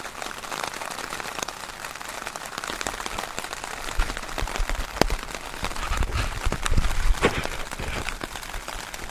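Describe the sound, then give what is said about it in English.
Dense, rapid pattering of rain striking a tent in Streatham, a continuous crackling texture with sharper bursts that swell louder toward the end. “I know that Streatham's a little bit, as they say, hot, and that sounds a bit like machine gun fire, but I presume it was rain, was it? It was, actually”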